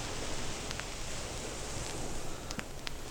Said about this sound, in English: Boy, the scratches are kind of outmaneuvering the waves here. I mean, is this the whole record?